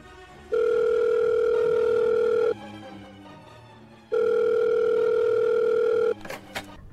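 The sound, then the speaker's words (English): A telephone dial tone sounds as two long, steady electronic hums, each about two seconds, separated by a short pause, followed by a faint click at the end. “A phone. I'll call somebody. I'll get help.”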